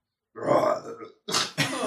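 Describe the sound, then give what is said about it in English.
A voice imitates a golem's roar with a deep, gurgling, burp-like growl lasting about a second, followed by two short, breathy, rasping bursts, fairly loud. “Beautiful roar. It sounded a bit like a burp.”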